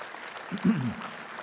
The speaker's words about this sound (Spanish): Le damos un aplauso a Dios para su gloria, que se lo merece.